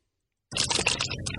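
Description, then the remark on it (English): A green plastic Gatorade bottle pops back into shape after being squeezed to drink from it, a burst of quick crinkly crackles and ticks lasting about a second, with no one speaking. “The de-squeezing of a Gatorade water bottle.”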